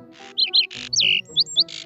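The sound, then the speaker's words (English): A bird in a tree at a school chirps in a quick series of bright, high tweets and short whistled notes, clear, alternating with brief breathy noise bursts and a faint low hum underneath. “Well, hello, bird. Any chance you've got a pencil?”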